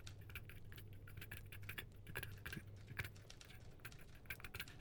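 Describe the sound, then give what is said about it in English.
A secretary receptionist in the front office of the Ballantrop Tribune types away madly: fast, steady typing on keys, a dense flurry of light clicks that never lets up, fairly quiet, over a low electrical hum and with no one talking. “You get to the front office and there is a secretary receptionist typing away madly.”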